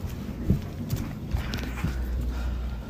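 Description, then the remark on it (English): A clothes dryer and washing machine run together, a steady low mechanical hum broken by irregular dull thumps of tumbling laundry, with no voices. “And the dryer's going, the washer's going.”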